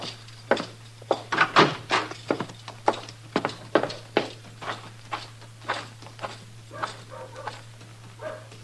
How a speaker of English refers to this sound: Ellen Henry's riding up the street, leading my horse.